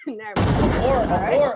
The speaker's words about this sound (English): Or gunshot. That's gunshot.